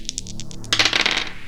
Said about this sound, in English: I'll just say that they'll find 1 to 100 gold pieces worth of mixed coins. Rolling D100.